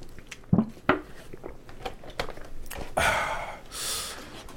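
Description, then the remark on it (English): A few sharp clicks and knocks, like a bottle being handled, then a sip of water followed by a breathy swallow and a soft exhale. No one speaks. “So let me take a swig of water for the working man.”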